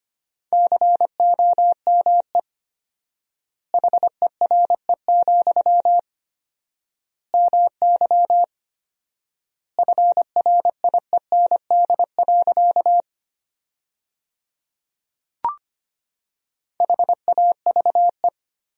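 A steady mid-pitched Morse code tone keys out quick dots and dashes at 25 words per minute with four-times word spacing, sending sentences built from common words, in five bursts separated by long pauses, with a single soft click in one of the gaps and no voices.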